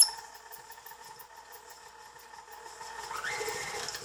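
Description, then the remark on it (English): An electric mixer whirs steadily with a thin, high motor whine, then a squeaky, wavering tone swells in toward the end as it creams three cubes of butter and two kinds of sugar in a mixer bowl for cookies. No one speaks. “Here comes my squeaky mixer.”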